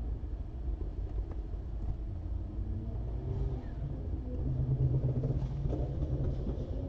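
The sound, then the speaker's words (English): Muffled engines rumble and rev somewhere outside, a steady low drone with a couple of rising revs swelling toward the end, with no talking. “It's like a car meet out there.”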